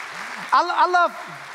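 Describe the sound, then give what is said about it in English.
A church audience claps in a steady, even wash of applause throughout, with a single voice calling out briefly over the clapping in the middle. “I love, yeah, you can clap about that if you want. You should.”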